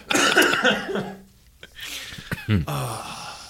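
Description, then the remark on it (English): A forceful sneeze bursts out with a sharp breathy rush, followed by a short gasping breath and a few quieter nasal snorts as it settles. “God bless you.”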